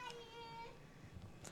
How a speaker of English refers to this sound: Infant party going on in the background.